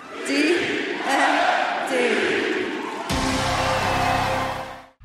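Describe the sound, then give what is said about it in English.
A large wrestling crowd in Pittsburgh cheers and roars loudly and steadily for about five seconds for Dr. Britt Baker; partway through the noise changes character, with a low droning tone rising under the cheering. “I love to see the crowd pop for her.”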